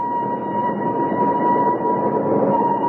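A train pulls into a station with a steady, sustained whistle held over a low continuous rumble of wheels and machinery, loud throughout, with no voices.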